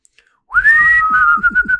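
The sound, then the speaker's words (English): A person whistles a clear, sustained tone that rises and then holds steady, wavering slightly, fairly loud, with some low rumbling noise underneath. “That's the exact whistle.”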